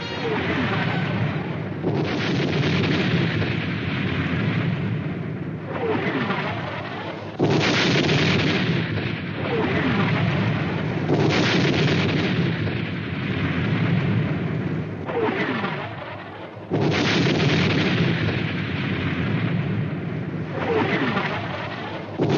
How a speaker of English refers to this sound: To prepare to go over the top, the British poured 5 million shells into German positions, an area which had been reclaimed marshland.